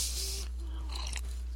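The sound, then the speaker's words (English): A quiet sip of peppermint tea followed by a swallow, with soft wet mouth and throat sounds over a faint steady background hum. No one speaks. “Maybe I need to take a drink.”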